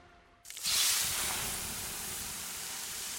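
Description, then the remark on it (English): A sudden loud hiss as water is poured onto 800-degree sauna rocks, bursting into a sharp sizzle and settling into a steady, slowly fading steam rush, with no voices. “The sound of water being poured on 800-degree rocks.”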